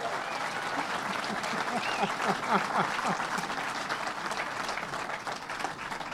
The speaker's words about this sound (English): So, but let's give the commissioner another round of applause.